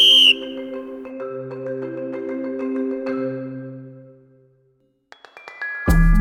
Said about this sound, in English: Competitors have gathered, all wearing their very own pair of me. Their eyes are focused and their muscles are tensed. The referee raises his whistle and time to roll. It's go time.